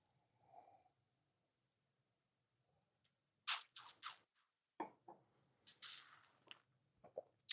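Someone sips wine: a series of short, wet slurping and swallowing sounds in irregular bursts after a brief faint noise, with no talking.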